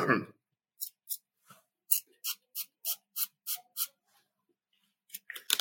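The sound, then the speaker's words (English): A spray bottle pumped about ten times into the throat for a cough, in quick, fairly even succession, each squirt a short sharp hiss, moderately loud, with brief bits of voice at the start and end. “So if you have a sore throat, you can spray it in your throat, and it will immediately make it feel better.”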